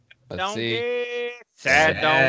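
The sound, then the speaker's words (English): A person's voice imitates a cheerful donkey bray in two close, loud bursts: a long, strained, wavering call followed after a brief gap by a shorter, rougher one. “I'm starting happy. Happy donkey.”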